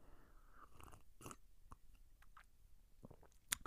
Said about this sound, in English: Hold on one moment. I'm going to take a sip of my half-calf coffee.